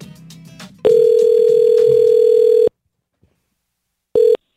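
A loud, steady telephone dial tone holds for about two seconds as a phone call is placed, cuts to silence, then returns in a short burst, with faint background murmur before it begins.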